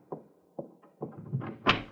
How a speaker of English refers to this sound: Remember, as soon as I open the door.